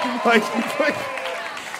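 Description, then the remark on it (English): An audience breaks into steady applause, a dense wash of many hands clapping at moderate volume, with a few voices calling out over it. “No, yeah, well, clap for the good parents.”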